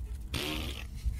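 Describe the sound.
A short burst of rushing, hissy air made with the mouth to play a gas creature in a role-playing game, with a slight buzzy edge, lasting about half a second before cutting off. It is fairly loud, with no talking.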